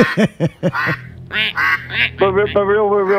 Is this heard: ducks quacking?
yes